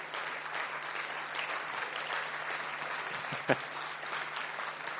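A crowd applauds steadily for the full five seconds, a dense wash of clapping at an even volume, with one sharper clap standing out briefly near the end.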